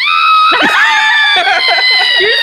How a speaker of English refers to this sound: With your sound effect. That's terrible. I don't think you've ever used that scream one. That's terrible.